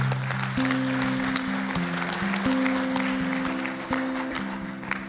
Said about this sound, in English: We can clap. If we're going to clap, let's do it.